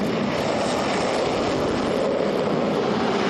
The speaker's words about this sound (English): 13 minutes after landing, the aircraft took to the skies to return to base.